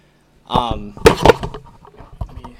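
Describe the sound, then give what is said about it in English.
A microphone gets knocked close up: two sharp, loud thumps in quick succession, then a few softer rattling bumps, with a brief vocal sound just before. “Let me knock my podcast mic off. I can edit that out.”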